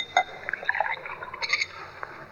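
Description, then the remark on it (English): Water is poured into a glass for someone to drink, trickling and splashing for a couple of seconds, with small bright gurgles and a faint clink, quiet, with no voices. “Well, water can't do you any harm. I'll pour you some.”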